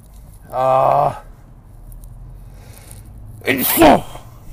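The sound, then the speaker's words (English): A single loud sneeze bursts out near the end after a drawn-out vocal intake, with a quiet pause between the build-up and the explosive release. “I thought I would continue, and I'm dying to sneeze, and I hope to God I don't do it.”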